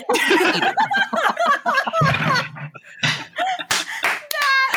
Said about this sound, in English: when I sarcastically clap to you, this is 1,000% sincere. That is so good.